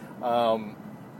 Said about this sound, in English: By the way, if you're hearing background noise, that's the air conditioner going, because finally the weather is good in Denver.